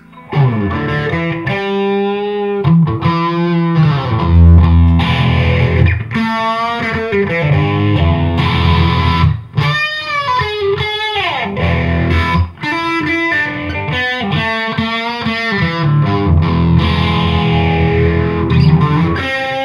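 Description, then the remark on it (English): Loud, overdriven electric guitar played through a phaser pedal, with chords and melodic runs given a sweeping, swirling tone that carries on steadily for about twenty seconds with no one speaking. “And then, yeah, this phaser, which I haven't put on my board to play live yet because I haven't played live with it yet, but I might.”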